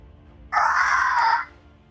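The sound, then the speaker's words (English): A voice imitates a monster's chittering screech: one loud, harsh, rasping cry lasting just under a second, alone, with brief quiet before and after. “It makes this chittering screech sound as you see just 1, 2, 3, 5, 8 hands pointing in all different directions and arms from its body.”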